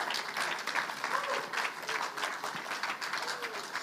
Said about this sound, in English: So why don't we give him a big, big, enthusiastic round of applause as he comes forward.